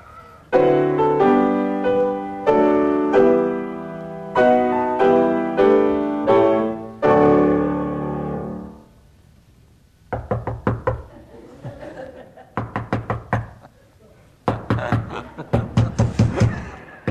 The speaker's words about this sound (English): And incidentally, that was David Furman who played the theme tune.